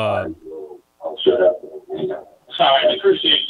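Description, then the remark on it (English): A tinny, delayed echo of a person's voice comes back over a call line because a newly added participant's computer volume is too high, arriving in a few short, garbled bursts of speech-like sound with brief gaps between them. “My only question is, hey, I got somebody that's got to turn their volume down that's in the call right now, because I can hear an echo of myself.”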